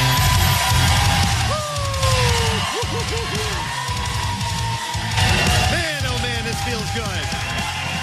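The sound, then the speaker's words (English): A theater crowd at the Colonial Theater in Phoenixville cheers loudly and steadily during the Christmas Miracle live broadcast, a dense roar of many voices broken by rising and falling whoops and shouts, with a brief dip before the cheering surges again. “What a beautiful crowd.”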